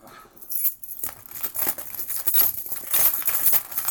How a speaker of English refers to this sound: Well, my phone is literally in my pocket with my keys. You got a key? Yeah. You want to drag these keys across the front? Yeah.